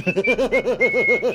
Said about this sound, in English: I'm going to stand nonchalantly whistling against a tree.